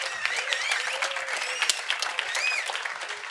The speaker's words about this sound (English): We are going to carry on with a really nice party where … is going to play himself alongside other local artists and …, who has also joined us today. Please, a big applause for him as well.